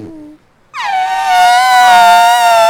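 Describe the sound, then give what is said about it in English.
A person imitates an elephant's trumpeting with their mouth. After a short low hum and a pause, a loud, brassy, sustained blast bends slightly downward in pitch and holds steadily for about two seconds. “There was a sound. It sounded like a trumpet. It was an elephant, dude.”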